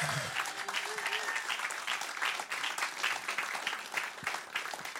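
An audience claps steadily for about five seconds for the speaker's younger brother, a fifth grader featured on a music track, a dense, even patter of many hands at a fairly constant loudness, with a brief faint vocal sound at the very start.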